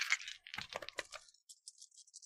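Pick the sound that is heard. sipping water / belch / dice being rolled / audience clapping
dice being rolled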